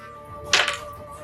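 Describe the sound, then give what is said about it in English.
A single sharp whip crack, the first attack of the character Anastasia's whip, snaps out in a quick burst, rising briefly above a faint, steady tonal hum that continues underneath. “The first one is going to be her whip.”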